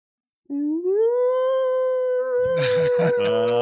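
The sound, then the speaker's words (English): A person imitates a dog's howl, the way the pet dog Raider howled at police-siren sounds: one long, loud tone that slides upward and then holds steady, with other voices breaking in over the end of it. “Howling at the top of her dog lungs.”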